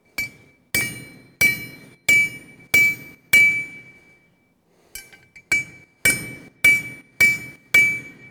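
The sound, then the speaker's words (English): Steady hammer blows ring out on a metal horseshoe for a horse that needs a little rounded shoe, about eleven sharp, bright strikes in two bursts separated by a short pause, each leaving a high metallic ring, with no talking. “So I know she needs a little rounded shoe, and she needs her heels pulled in.”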